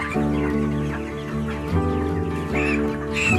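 A chicken clucks and squawks in a steady, drawn-out run of loud calls, rising in bursts toward the end, with no one talking.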